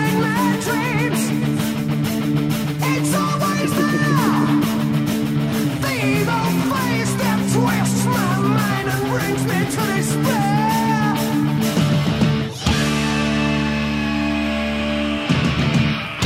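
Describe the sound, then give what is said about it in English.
A loud, dense rock song plays throughout, with a rock singer's high, strained screaming voice sliding and wavering over heavy sustained guitar and bass chords, briefly breaking near the end before the band crashes back in. “These are the 10 best screams in rock.”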